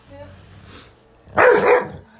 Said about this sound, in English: Shame on you! You stop barking like that! I said stop! Lay down. Good boy.